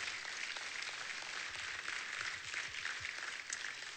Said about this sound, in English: So if you would, welcome them back to their seats as they go. Give them a round of applause.